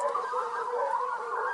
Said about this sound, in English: Oh, here we go. Can you hear the barking? That's our local fox hunt, ladies and gentlemen.